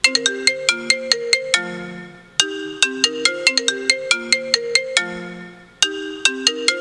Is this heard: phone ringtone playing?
yes